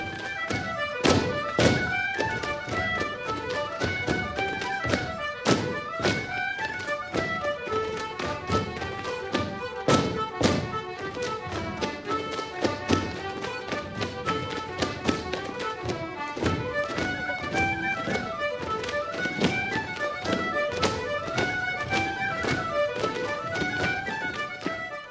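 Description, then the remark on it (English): Dancers' feet tap sharply on a stage at Siamsa Tíre in the show Ding Dong Devereux, Forging the Dance, in quick, rhythmic bursts, loud percussive strikes riding over lively melodic music from live musicians that plays steadily throughout. “Well, the musicians and the dancers are striking up for this new show, Ding Dong Dethero, Forging the Dance.”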